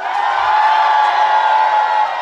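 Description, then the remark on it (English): An audience at a live tabletop role-playing game session erupts in loud, sustained cheering and whooping as a character's head is kicked off, a dense wall of many voices holding steady for a couple of seconds without a break. “Hey, yo, I just want everybody to know y'all just cheered for domestic violence.”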